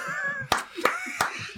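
Four sharp hand claps land at a steady, unhurried pace, each crisp, over a faint humming tonal background.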